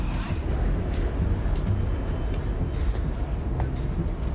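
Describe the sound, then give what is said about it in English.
Steady, dense rumble of a moving train heard from inside a carriage, travelling from Broadway out to Queens, New York; low and continuous at an even loudness, with faint rattles and clicks scattered through it and a murmur of indistinct voices. “we're boarding a train from Broadway out to Queens, New York, to meet this episode's guest.”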